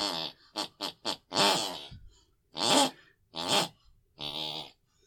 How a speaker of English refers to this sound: Each week we press our ear against the bedroom wall, whatever my mother watched before she went to sleep, picks and pulls in her unconscious mind, and she snores that very tune.